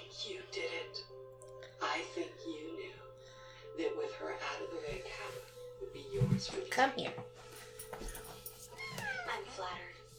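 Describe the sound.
A cat gives small, thin, faint meows, mixed in with murmured voices and soft background noise.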